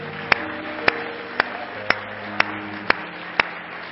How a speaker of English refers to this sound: Everybody give the Lord a hand clap of praise.